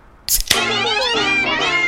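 A cat lets out a loud, drawn-out meow, with a wavering, harmonic cry that starts sharply and holds steady for over a second.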